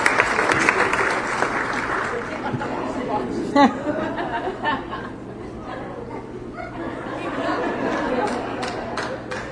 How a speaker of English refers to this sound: I have to tell you, your laughter, your applause, oh, made my life tonight. Thank you for that.